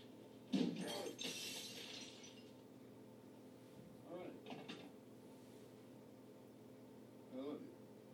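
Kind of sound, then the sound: impact, glass shattering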